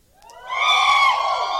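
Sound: audience screaming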